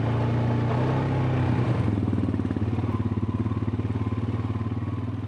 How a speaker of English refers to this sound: Sarah revs up her four-wheel all-terrain vehicle, and I hop on behind